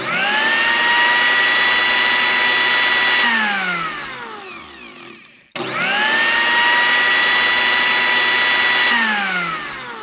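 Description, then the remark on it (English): A blender whirs loudly in two close bursts, making a kiwi fruit smoothie from 3 peeled kiwi fruit, 1 peeled mango, 500ml of pineapple juice and 1 banana. Each run holds a steady high-pitched motor whine, then winds down, with a brief pause before the second start. “Okay, we better put it in the blender then.”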